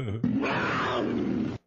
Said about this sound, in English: This was a tiger.